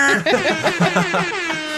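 air horn blast

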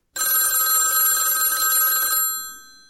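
telephone ringing

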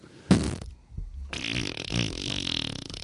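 fart sounds

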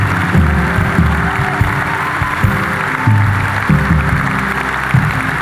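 audience applause

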